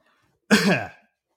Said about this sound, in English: Okay, nice and COVID themed there. Okay, fair enough. Don't forget to cover your mouth when you're coughing.